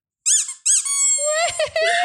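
A rubber chicken toy squeaks in two short, bright honks, then lets out a longer wavering squeal that slides downward with a buzzy, reedy tone, loud and shrill throughout.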